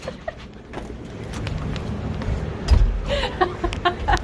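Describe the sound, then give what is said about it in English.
A car door is slammed all the way shut with one heavy, low thud partway through, followed by a few lighter clicks and rattles over a steady rumble of background noise. “I slammed it. You heard it.”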